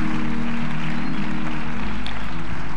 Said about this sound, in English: Come on, let's give God a strong hand clap of praise.